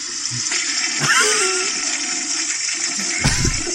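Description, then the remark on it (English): A toilet flushes with a steady, loud rush of water for nearly four seconds, a brief squeaky warble rising through it early on and a gurgling thump near the end. “The crowd goes wild every time he goes to the bathroom.”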